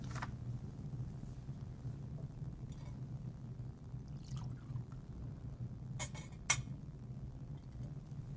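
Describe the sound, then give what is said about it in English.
Water and wine are poured softly into a metal chalice over a quiet hum, with a few faint clinks of vessels touching near the end and no talking. “By the mystery of this water and this wine, may we come to share in the divinity of Christ”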